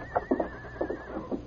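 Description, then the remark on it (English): A spirited horse, Scout, neighs at the corral in a quick, shaky whinny, several bursts rising and falling over a second and a half, with no talking. “I never saw such spirited horses.”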